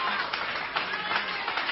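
An audience claps their hands together after being asked to clap if they believe, a dense, steady wash of many overlapping claps at moderate volume, with indistinct voices mixed underneath.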